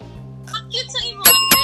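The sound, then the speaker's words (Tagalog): A bell rings twice in quick succession, bright, the second strike slightly softer, after some brief vocal sounds and over a steady low hum. “So makita ang akon nga legendary bell, it's there.”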